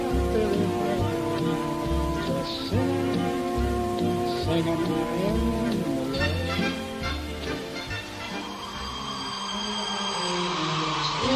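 Steady rain patters throughout a dance scene in a 1952 musical film, a soft wash of falling water beneath loud, swelling orchestral music, with a voice singing along at moments.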